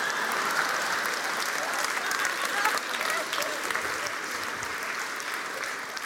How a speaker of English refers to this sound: Thank you very much. Give the lady a round of applause.